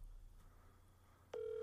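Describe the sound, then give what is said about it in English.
After a second of low, humming quiet, a steady phone ringing tone cuts in abruptly and holds to the end, thin and tinny, as an outgoing phone call rings on speakerphone. “I hear it's ringing.”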